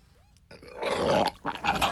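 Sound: loud burp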